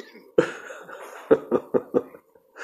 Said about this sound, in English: Well, I'm about to spark this bull horn in a second. Oh, shit. Whoa. That's all she wrote. No truer coughs have been coughed in.